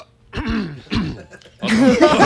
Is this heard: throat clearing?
yes